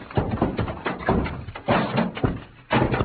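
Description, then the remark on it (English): Stacked heavy wooden packing cases, bumped into, topple and crash down in a rapid run of loud thuds and clatters, a brief lull, then one final heavy impact. “Santos, those cases hit Pancho and knocked him out.”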